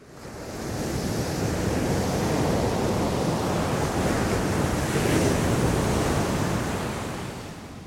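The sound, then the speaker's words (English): Steady ocean waves wash and roar continuously across the open sea, heard from a small boat, a broad rushing noise with some wind buffeting, swelling slightly midway before easing off at the end. “Renfro guides a small boat on the open sea until they reach the colony.”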